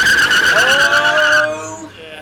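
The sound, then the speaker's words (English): A loud tire screech as a car brakes hard, a sustained high squeal over engine rumble for over a second before cutting off, leaving a lower, fading engine tone. “we've got to pull up on the brakes, pull up on the brakes, pull up on the brakes.”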